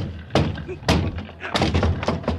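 A locked door being kicked in, in the radio drama Broadway's My Beat: a series of heavy, booming thuds and cracking impacts, four or five blows at an irregular pace, loud and resonant with a splintering edge.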